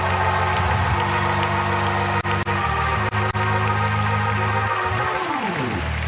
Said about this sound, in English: Clap your hands for the Lord Jesus.